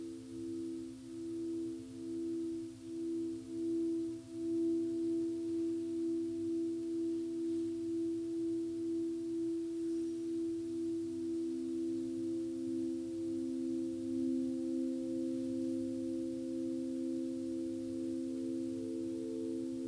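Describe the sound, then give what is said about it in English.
Tibetan singing bowls ring in a sustained, layered hum of low, pure tones that waver and beat gently. Several soft swells come early, then the ringing settles into a steady drone with no voices. “And so simply receive and see what it's like to listen to the sounds of the bells.”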